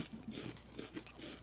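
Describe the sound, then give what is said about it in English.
Rainbow Doritos tortilla chips being crunched and chewed, a steady run of crisp, brittle crackles over a second and a half, fairly soft and with no voices. “Well, we'll leave the bags open here and we can just kind of... All right. Kind of munch out.”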